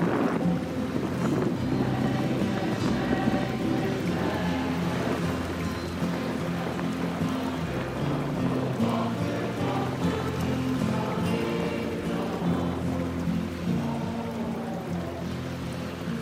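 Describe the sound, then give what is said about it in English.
A steady, loud roar of hurricane rain and churning floodwater, with a deep low rumble underneath and gusting wind, continuous for the whole stretch with no voices. “Just close your eyes. Hear the hurricane, see the water, and then astonishingly, watch the bears go by.”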